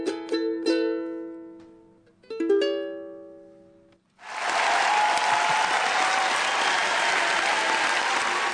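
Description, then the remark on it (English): A few last acoustic guitar strums ring and fade, then an audience bursts into loud, sustained applause that continues steadily and densely for the remaining several seconds. “Give a round of applause again there.”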